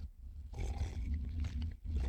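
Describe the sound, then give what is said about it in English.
A loud, rough sipping and slurping of coffee with a low rumble, running almost continuously for about two seconds with one short dip in the middle. No one speaks. “Let me take a sip of coffee real quick.”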